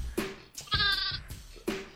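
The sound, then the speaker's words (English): A lamb bleat sound effect, played on a show in place of an air horn: a quick burst of wavering, nasal cries, a strong harmonic bleat in the middle flanked by shorter calls, all fairly loud with no talking. “That was supposed to be an air horn, but I hit the lamb, so fuck it, right?”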